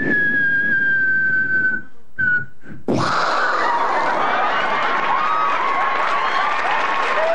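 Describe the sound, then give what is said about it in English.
Comedian Ray Romano, in one of his first stand-up appearances, vocally mimics a nuclear explosion: a long, steady whistled tone, a few brief sputters, then a loud, sustained roaring blast sound, with crowd applause and laughter swelling alongside. “A Nuclear Explosion by Ray Romano.”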